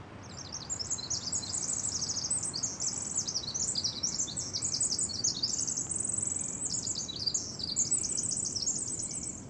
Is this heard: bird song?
yes